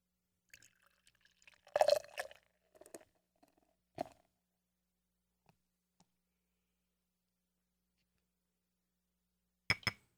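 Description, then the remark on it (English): Abita Andy Gator, a high-gravity beer, pours into a glass in a few short, faint glugging splashes and drips, with quiet gaps between them and a brief clink near the end; no one speaks. “Let's see how this fucking bad boy pours, man.”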